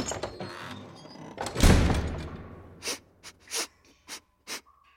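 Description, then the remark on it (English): A run of short, sharp sniffs, five or six quick inhalations spaced unevenly, following a louder rustling burst of noise, with no talking. “I'm sniffing for clues.”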